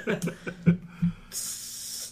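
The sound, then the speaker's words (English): Several short voiced bursts give way to a steady, bright hiss, like a mouth imitating an espresso machine steaming milk. The hissing holds evenly for under a second at the end. “It's the espresso sound. I figured that out. Your steaming milk noise, yeah.”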